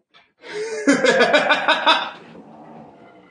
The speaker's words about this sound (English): Ooh, someone growling? Yeah, one of the cats is growling. I'm thinking that's Knox.